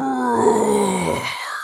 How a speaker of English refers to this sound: It would happen so suddenly. A big roar would just pop out.